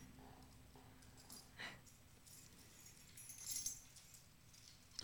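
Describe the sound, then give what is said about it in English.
Keys jingle faintly in two short bursts in a studio, a quick metallic shake and then a longer rattle a couple of seconds later, over a low, quiet background hum with no talking. “These keys, one of these keys, will let you into something.”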